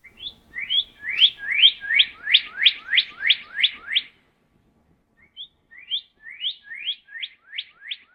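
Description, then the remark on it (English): A Lucy's Warbler sings two bright, rapid series of high, slurred chip notes, each rising then dropping, with a brief pause between phrases; clear with no other sounds. “sprung here in Arizona, as announced by the arrival of the Lucy's Warblers back in the Tucson area this week.”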